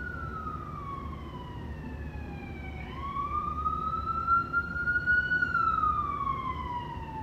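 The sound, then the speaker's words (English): A wailing emergency vehicle siren passing by sweeps slowly up and down in pitch, steady over low traffic rumble, with no one speaking. “Let me just wait for those sirens to pass by.”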